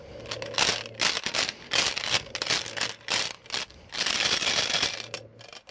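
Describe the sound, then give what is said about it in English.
A large handful of dice of every known type rattles and clatters continuously inside a clear plexiglass baseball display cube, shaken in several loud, dense bursts with brief pauses between them, with no voices. “How many dice do you have in there? What are you rolling in?”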